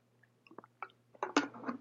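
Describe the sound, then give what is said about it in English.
Someone takes a sip of water: a few soft wet mouth clicks, then a louder gulp and a swallow, over a low steady hum with no talking. “Shit, let me try to get a drink of water while I think.”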